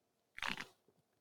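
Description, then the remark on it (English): A can snaps open with a sharp, bright crack, followed by a short hiss of fizz that quickly fades into quiet, with a faint soft tick at the end. “So we're going to crack it open in 3, 2, 1. There it is. It's still got sizzle.”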